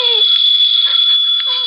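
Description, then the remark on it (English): A telephone rings without pause, a loud, steady, high-pitched electronic trill that holds the same shrill tone throughout, with no voices. “The phone kept ringing and ringing until I guess I went a little crazy.”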